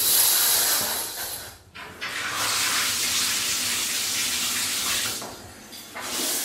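A steady rush of shower water pours continuously with a bright, hissing spray, briefly dipping before resuming at full strength, loud with no voices.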